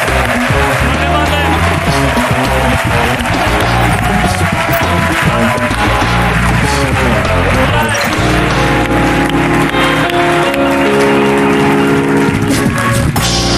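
A studio audience on the TV show La Resistencia claps and cheers steadily throughout for a guest, loud and dense, while upbeat band music plays underneath, its sustained tones growing clearer toward the end.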